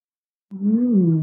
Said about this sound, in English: And if that doesn't work, believe it or not, what will really settle the body and the mind is a yawn. See if you can impose a yawn and just like, oh.